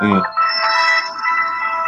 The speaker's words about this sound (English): That was a perfect time. I don't know who phone was that. What that was, but that brought that point home.